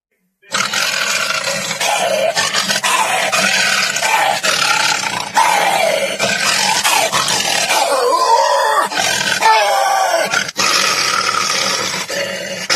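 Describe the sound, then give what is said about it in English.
A man's voice imitates a lion to make lion sounds for a film, before digital effects. He lets out a long, loud, continuous, angry roar and growl with rough rasping breaks and rising and falling intensity for over ten seconds. “people's voices actually had to make lion sounds”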